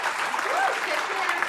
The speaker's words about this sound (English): And what that means is whenever a patient is discharged after being successfully treated for COVID-19, all available staff reports to the lobby and they applaud the patient